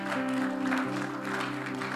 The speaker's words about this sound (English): Oh, you can clap.